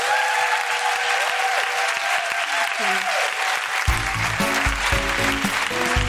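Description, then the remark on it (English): A crowd at The Guilty Feminist gives a loud, sustained round of applause for guests Alex Cowan and Beaver Meadow, a dense wash of clapping that holds steady throughout, with music coming in beneath it partway through. “All right, could you please give a big round of applause for Alex Cowan and Beaver Meadow?”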